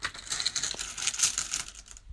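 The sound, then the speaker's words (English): Keys jingle and clink for about two seconds as they are fished out at a door, a busy run of bright metallic rattles and taps with no one speaking. “I fished out my keys.”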